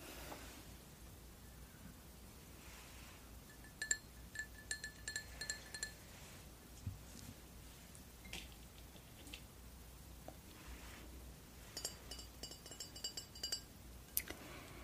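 A glass bottle of Perrier sparkling water clinking and tapping in scattered bursts, with bright chiming clinks around a steady low hiss, moderately quiet, no talking.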